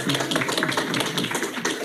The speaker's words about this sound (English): It is now the time of year that we talk about our partnership with the American Action Fund for Blind Children and Adults to promote the Braille Readers Are Leaders contest. Yeah, you can applaud for that.